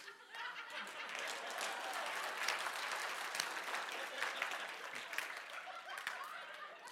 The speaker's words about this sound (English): That was me clapping at a black church one time. So it was Martin Luther King week. I mean, it was probably like 1998, 99. And this all-black church, Mount Sinai Full Gospel Deliverance Center.